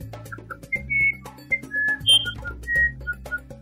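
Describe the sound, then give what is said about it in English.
Someone whistles a wren-like birdsong for a wren in a told story singing goodnight to her friends at sunset: a quick run of about a dozen short, bright chirps and slides at varying high pitches, over a soft, steady low musical backing. “That night, as the sun set high above Winnie's nest, she yawned and was thankful and sang a song goodnight to all of her friends.”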